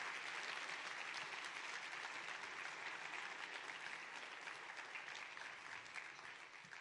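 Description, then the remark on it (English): An audience applauds steadily, a dense wash of many hands clapping at an even, loud level for the whole stretch with no voices rising above it, tapering only slightly at the end. “And I want you to show them around by a round of applause how much you appreciate the ministry that God has given them.”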